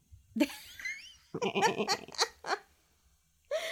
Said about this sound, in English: That might be a sheep. I gotta pay more attention between sheep and goats. But so don't rake me over the coals. I realize it sounds like a sheep.